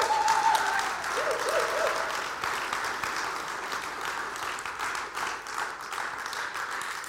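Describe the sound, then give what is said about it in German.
A church audience bursts into sustained applause for the Lord, a dense, steady wash of many hands clapping for about seven seconds, with a few faint voices and a brief tonal cheer or whoop early on. “Dann gib dem Herrn einmal einen kräftigen Applaus.”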